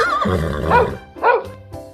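A horse whinnies in a loud, wavering neigh lasting about two seconds, its pitch rising and falling in a couple of quick surges before trailing off.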